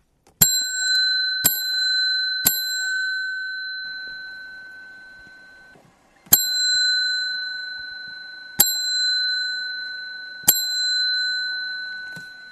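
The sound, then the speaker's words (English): A bicycle bell dings three times, pauses, then rings three more times, each bright ding ringing on and fading. Clear, with no voices. “I don't know why I'm going with three bells these days, but that's what you get.”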